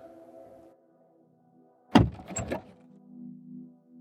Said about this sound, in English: I open my car door and collapse into the driver's seat before leaning over to retrieve my keys from the glove box.